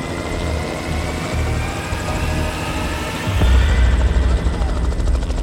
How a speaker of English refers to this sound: So Melbourne police arranged for a helicopter to go out and survey the land.